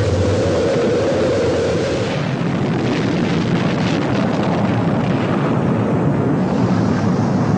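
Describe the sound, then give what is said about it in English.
A rocket's main engines roar at liftoff, a loud, continuous, rumbling blast with a deep low drone early on that fills the whole clip without letting up. No voices are heard. “T-minus 10, 9, 8, 7, 6, 5, 4. We've gone for main engine start. We have main engine.”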